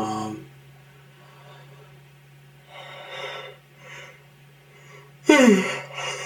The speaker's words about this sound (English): I'm sorry, for some reason I'm yawning a lot today.